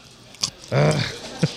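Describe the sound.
A sharp, crisp crunch of biting into a pickle, followed by a short voiced murmur and then one more small crunchy chew.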